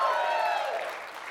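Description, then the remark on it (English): A church audience at New Life Church claps together in a dense, steady wash of applause with some voices mixed in, fading slightly toward the end. “That's what I hope that you clapped because that's you're serious about that and not just clapping because I asked you to clap, right?”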